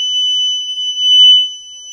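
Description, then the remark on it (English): A house alarm sounds a loud, piercing high-pitched tone that holds steady without a break for the whole two seconds, with no voices. “My house alarm is going off.”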